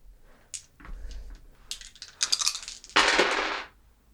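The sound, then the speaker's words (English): Dice are rolled for a wits and awareness check and clatter across a hard tabletop: a few sharp clicks followed by a dense rattling roll that tumbles for about a second before settling. Fairly loud, with no talking. “Can you roll me a wits and awareness?”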